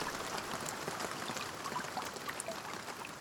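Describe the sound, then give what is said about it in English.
Steady rain pattering on leaves, a dense, even shower of countless small drops, with no voices and no change in intensity throughout. “I love the sound of Boobook Owl's hooting. And the sound of raindrops on leaves.”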